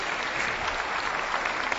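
Steady audience applause for a couple's 16th wedding anniversary, a dense wash of many hands clapping at an even level with no gaps or speech over it.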